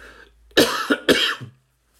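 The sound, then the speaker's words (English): Two loud, forceful coughs in quick succession after a brief quiet breath, with no talking. “And then, of course, excuse me, cough coming.”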